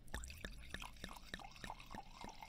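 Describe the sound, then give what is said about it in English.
Wine glugs out of a bottle into a dirty wine glass in a quick, uneven series of about eight soft gurgling splashes, quiet, with no talking. “Oh, this wine doesn't pour very well.”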